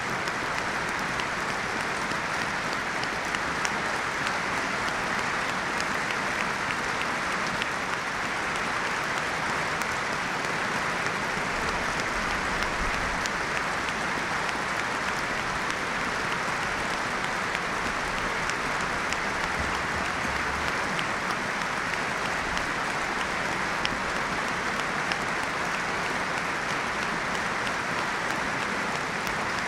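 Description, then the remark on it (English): Sustained applause from a large stadium crowd at Molineux, a minute of applause in tribute to former Wolves goalkeeper Paul Bradshaw, started and ended on the referee's whistle: a dense, steady wash of clapping that holds at an even level for about thirty seconds without pause, with no voices standing out. “Would those who can please be standing for a minute of applause, which will start and end on the referee's whistle.”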